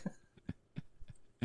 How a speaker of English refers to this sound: Cough it to death.